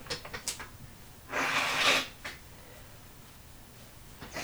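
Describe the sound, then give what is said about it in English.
A single loud, breathy nose blow by a person with a cold, lasting under a second, a broad hissing rush of air, framed by faint sniffs and rustling before and after. “I'm going to blow my nose real quick.”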